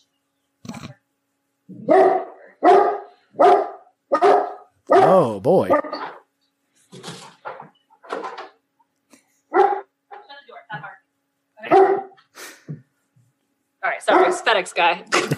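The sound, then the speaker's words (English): A female dog barks repeatedly at a FedEx delivery person in short, loud bursts, a steady series of sharp woofs with brief pauses, while a person speaks briefly in between. “And now she won't stop because she has to get the last word in.”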